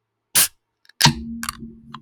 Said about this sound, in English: He brought me a flight of beers, so today I'm going to be cracking a cream ale from Clear Lake Brewing Company. So let's just see how she burps here for us.